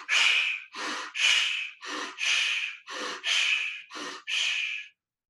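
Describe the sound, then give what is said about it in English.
Quick, forceful breaths alternate in and out about once per second, nine bursts in a steady rhythm, loud with brief gaps between them and no talking. “So now let's do a second in and a second out.”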